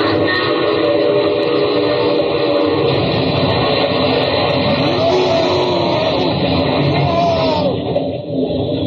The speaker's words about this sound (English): That's about the noisiest crash that's ever been on radio.